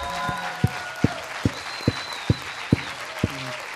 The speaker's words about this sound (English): can we just start by honoring Pat and Winnie and just give them a huge round of applause?